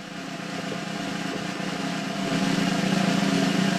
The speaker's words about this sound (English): Here is the drum roll.